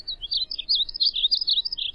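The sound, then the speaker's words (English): A painted bunting sings a rapid, continuous warbling song of high, sweet notes, clear, with no voices and only faint low background rumble. “It's the flying rainbow, the living box of crayons, the painted bunting, Passerina cirrus.”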